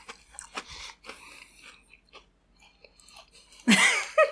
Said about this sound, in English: It takes a lot to chew. The cookie's good. I like it.